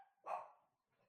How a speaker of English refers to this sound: Yeah, that was my guest, my nephew dog who's visiting. It's like so. He gave approval.